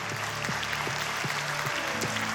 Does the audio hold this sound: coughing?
no